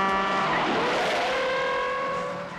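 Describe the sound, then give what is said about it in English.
A car swerves at speed around an oncoming 18-wheeler truck, engine roaring and tires squealing high, the pitch sweeping as it skids; loud throughout with no voices. “And at the very last second, she just swerves around it, and he like kind of jostles himself, like he looks like shook up about it, and she's amused by this.”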